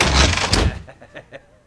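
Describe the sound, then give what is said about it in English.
A heavy, rattling thump at a door, followed by three quick, lighter knocks in a steady rhythm, as a group of gang members knock on Hollis Mason's door, with no one talking. “That was a gang that a group of gang members who knocked on his door, thinking, you know, okay, so the other Night Owl takes up the mantle again.”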